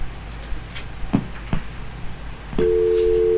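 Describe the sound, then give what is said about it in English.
A few soft clicks on a phone line after a call drops, then a steady, continuous dial tone hums clearly until the end, with no one speaking. “We seem to have lost them.”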